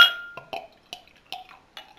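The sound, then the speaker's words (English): A stout, brewed more like a porter, glugs out into a glass in a series of short, evenly spaced gurgling bursts, moderately loud, with no talking. “Right, let's get this out into my glass and see what I think of it.”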